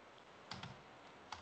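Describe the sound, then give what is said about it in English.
A few quiet keystrokes tap on a computer keyboard: a quick cluster of clicks, a pause, then one more key press, with no one talking. “but I was actually literally typing that in.”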